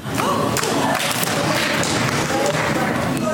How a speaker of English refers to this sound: It happened just feet away from Republican leader Mitch McConnell, prompting an audible gasp in the chamber.